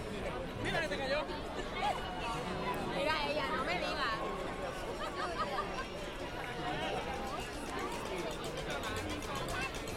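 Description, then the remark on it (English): A steady wash of crowd chatter at a holiday event, as people push through the crowd toward an eggnog and cookie selection, many overlapping voices blending into a busy, continuous murmur with occasional brighter exclamations rising above the din throughout. “Now we're just fighting the crowd, trying to get to our eggnog and cookie selection.”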